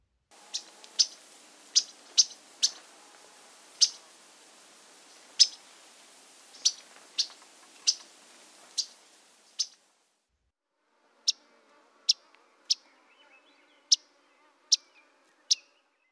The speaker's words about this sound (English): One last time, yellow-rumped warbler call notes, some Audubons and some Myrtles.